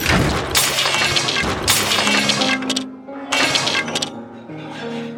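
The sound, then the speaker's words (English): A steak plate crashes loudly to the ground in a series of smashing impacts followed by ringing, clattering debris that settles between the bursts. No one speaks. “I'm afraid Mini Jacques has crashed my steak plate to the ground.”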